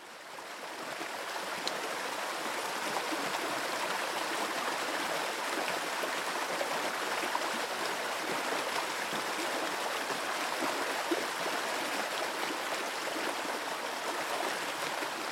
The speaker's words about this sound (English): The enjoyment of your surroundings, your environment, it's hard to describe how the therapy of running, the sound of running water, is just, I find it, and a lot of people would find amazing, you know.